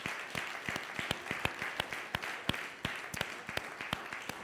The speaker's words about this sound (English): Go ahead and clap your hands. That's all right.